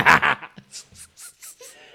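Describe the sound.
A voice imitates a barking frog with two loud, rough bark-like bursts in quick succession, followed by a series of soft breathy puffs, like quiet laughter.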